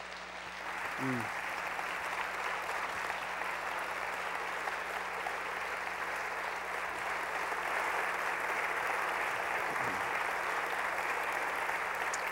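Sustained audience applause, a dense, steady wash of many hands clapping at an even loudness for about twelve seconds, with a brief vocal sound or two rising faintly underneath.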